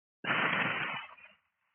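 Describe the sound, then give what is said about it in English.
A single breathy hiss of air pushed out through the mouth during a breathing exercise, starting abruptly, holding steady for about a second, then tapering off into silence. No talking. “This time we're going to exhale for 8 seconds and hiss it out of the mouth.”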